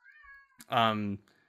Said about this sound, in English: Did you just hear my cat?